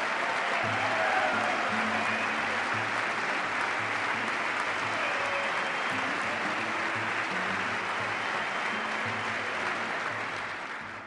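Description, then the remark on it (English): Steady audience applause after a speech line about cutting taxes, a dense, even wash of clapping hands that fills the whole stretch and holds at full strength for about ten seconds before it begins to taper off. “I thought I'd get some applause on that one.”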